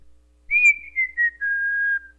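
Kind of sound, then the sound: human body sound, person whistling a tune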